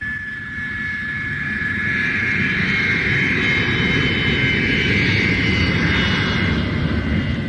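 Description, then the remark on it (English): A jet airliner roars as it lands on the runway at Kai Tak airport in Hong Kong, a loud, steady rumble topped by a high, thin turbine whine that swells slightly and holds for several seconds. No voices. “Another aircraft safely down.”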